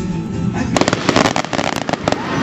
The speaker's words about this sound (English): No 4th of July celebration would be complete without fireworks.